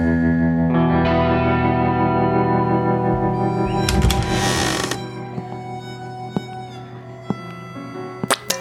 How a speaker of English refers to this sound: As I look past the miles of jagged sandstone, I hear the faint but unmistakable creak of swinging saloon doors.